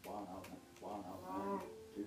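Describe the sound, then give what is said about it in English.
A video game cow moos in a few drawn-out, low, droning calls that rise and fall, filling the short stretch at a steady volume. “Come back, cow, I need some food.”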